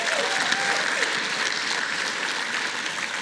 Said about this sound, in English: The first is the Glover U operations team, and the second is our incredible audiovisual team. Would you guys give them a round of applause for today?